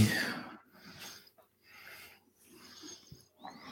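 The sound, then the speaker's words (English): Heavy breathing right against a microphone, several loud rasping inhales and exhales in a steady rhythm with brief pauses between, breathy and slightly snorting. “Why are you breathing so hard for?”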